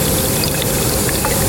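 A steady stream of wine, a 2018 Reserve Sauvignon Blanc, pours and splashes continuously and fairly loudly into a vessel from a dark gray cement egg tank holding about four barrels, with no one speaking.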